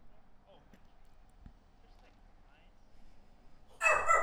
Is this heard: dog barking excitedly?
yes